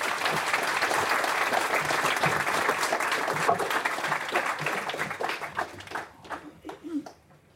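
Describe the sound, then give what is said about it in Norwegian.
Dense applause from an audience welcoming a guest analyst, a steady wash of many clapping hands that thins out and fades over the last couple of seconds, with a voice beginning to speak as it dies down. “Og gjerne litt applaus da.”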